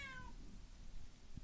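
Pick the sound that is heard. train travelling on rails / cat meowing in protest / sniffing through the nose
cat meowing in protest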